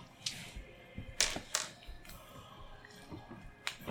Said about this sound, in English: I'm just going to set my dice over here.